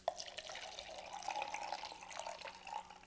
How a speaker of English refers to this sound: I mean, exactly how much water must I pour to this thing